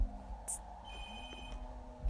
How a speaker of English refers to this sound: Oh, that's the phone.